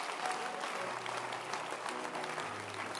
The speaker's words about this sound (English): Beautiful, beautiful. Can you clap your hands? Beautiful.